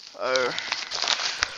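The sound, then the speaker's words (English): Crinkling paper and bubble wrap packaging rustle in a dense run of small crackles while a headset is being unboxed, ending with one sharper pop. A brief voiced sound comes near the start. “And there's always the poppy bubble thingies. And we got some sort of paper in here.”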